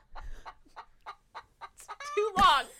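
A chicken clucks in a quick series of short, evenly spaced bursts, then breaks into a louder, drawn-out squawk at the end, clear with no talking.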